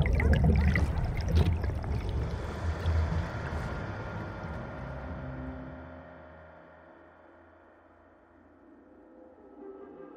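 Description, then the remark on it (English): A muffled underwater rush of churning water and bubbles, loud at first, then sinking into a dull, darker rumble that gradually fades. No voices are heard. “She clawed at the water above her, but her lungs burned badly, and the muffled barking was fading away as she slid deeper into the darkness.”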